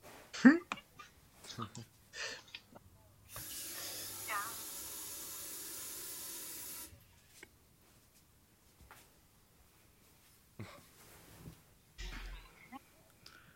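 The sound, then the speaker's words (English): A tap runs steadily for a few seconds as someone gets some water, an even rushing of water into a sink, with brief bumps and faint voice sounds before and after. “Sorry, I went quiet. I was getting some water.”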